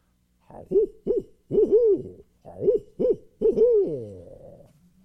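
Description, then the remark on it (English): A person, out in the dark, imitates a soft owl hoot with their voice: a rhythmic run of short, rounded hoots ending in a longer, drawn-out call, clear with no talking. “So you go out there in the dark and you do a real soft owl hoot. Like this.”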